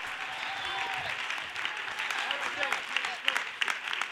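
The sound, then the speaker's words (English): An audience claps hands to worship the Lord during a church sermon, a dense, steady wash of applause, with a few sharper, louder claps standing out near the end and faint voices murmuring beneath. “You ought to clap your hands unto the Lord and worship him, because he's a good God.”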